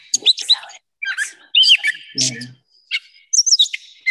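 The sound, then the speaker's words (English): A gray catbird sings a jumbled run of squeaky, twangy high notes and chatters, including a meow-like call, delivered in short irregular bursts separated by brief pauses, with no voices present. “All right, I'm going to play a little bit of the catbird just so people can hear it. Gray catbird.”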